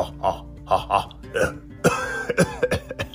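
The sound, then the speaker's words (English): A short run of voiced, rhythmic bursts like staged laughter gives way to a cluster of rough coughs caused by volcano smoke, several in quick succession, fairly loud. “Oh, the volcano smoke is making me cough a lot.”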